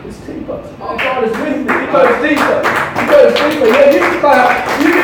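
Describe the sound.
A crowd claps in scattered, overlapping bursts that build after the first second, with a man's raised voice speaking loudly over the applause throughout.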